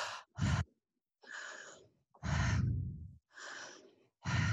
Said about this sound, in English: Yeah, one breath technique that could help women here is the open mouth inhale and exhale. That helps them get into a place of surrender. So if they're breathing in and out of their mouth without connecting their breath at all, so it's just